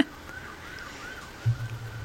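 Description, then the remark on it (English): A faint siren wails up and down steadily throughout, with a low rumble swelling briefly near the end. Nobody speaks. “Can you hear the sirens in the background?”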